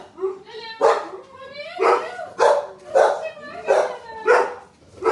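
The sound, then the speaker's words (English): Dogs bark loudly, a steady run of about six sharp, tonal barks in quick succession with brief pauses between them. “Dogs are here. Thank goodness we're all barking.”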